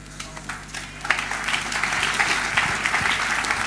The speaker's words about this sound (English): Look at somebody who is not clapping and tell the person, give me one reason why you are not clapping. Tell him. Ask him, give me one reason why you are not clapping for Jesus. No, I'm still not satisfied with the clapping.